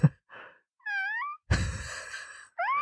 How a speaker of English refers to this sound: Where's Sora when you need him? Come save this cat.